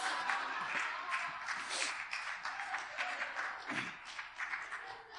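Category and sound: crowd, round of applause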